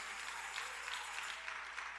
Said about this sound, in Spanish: Denle un fuerte aplauso al Señor, hermano, con todo el corazón. Fuerte ese aplauso, porque para el Señor Jesucristo.